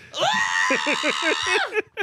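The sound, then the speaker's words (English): A person mimics a child's shrill, sustained scream, a piercing wail lasting over a second that breaks off with a few short gasping catches at the end. “Just screaming.”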